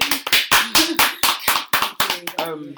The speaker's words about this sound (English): And wow, we just give you a massive round of applause. Thank you.